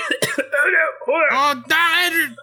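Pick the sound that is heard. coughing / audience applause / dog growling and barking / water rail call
coughing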